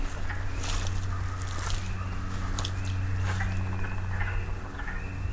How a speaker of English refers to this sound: Spring peepers, chorus frogs, and wood frogs, I think.